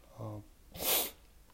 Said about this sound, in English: I don't know if I can stop it. I've had this post-nasal drip shit going on for a minute. I had a cold, and then it just transferred into post-nasal drip. See, I'm coughing now. But I do want to apologize for it. I'm going to try to not do it as much.